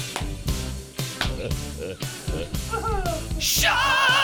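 Punchy rhythmic beats and a few sliding tones lead into a loud, piercing human screech that wavers and holds for the final second, with no talking.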